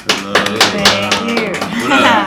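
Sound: applause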